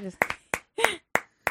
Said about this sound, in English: Everybody clap, okay? Okay.